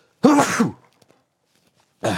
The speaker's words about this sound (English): I gotta sneeze.